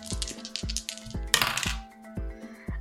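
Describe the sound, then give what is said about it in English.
Dice clatter and tumble across a hard surface in a string of sharp, irregular clicks with a bright ringing tone, swelling into a brief busy rattle midway before settling. No voices. “Please, can you roll me?”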